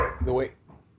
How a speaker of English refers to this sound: excuse my dog there. I don't know if you heard him,